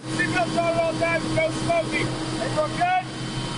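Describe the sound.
A helicopter shuttling between the U.S. Embassy and the airport in Kabul, Afghanistan, on its 10th trip of the day, gives a steady, low droning hum with a constant engine tone throughout, while voices talk over the noise.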